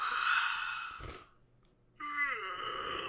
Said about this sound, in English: This is person sound effects. This is male straining.